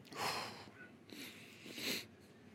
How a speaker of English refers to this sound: Sorry, I keep yawning. Oh, I apologize.